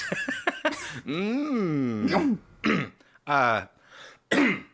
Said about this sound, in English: sorry, just clearing my throat.